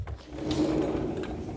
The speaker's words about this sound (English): My door is loud.